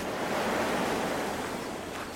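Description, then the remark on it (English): Steady wind rushes across a lakeshore, pushing against someone standing on a boulder, while waves wash continuously against the rocks, a broad, loud roar with no pauses and no voices. “The wind pushes back at me on the boulder I've chosen to stand on”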